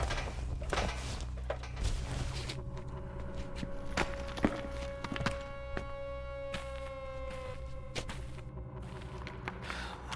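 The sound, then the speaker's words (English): Footsteps climbing stairs up from a tunnel toward a door leading to a building's basement and the surface, a steady series of firm thuds over a low rumbling background, with a brief ringing tone partway through and no voices. “up these stairs? Does that door lead to the surface?”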